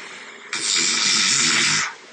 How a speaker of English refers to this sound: My snore score was 91. Most people are at 25. So that was like a really bad day. Then Monday was 55. I'll play a little excerpt from that.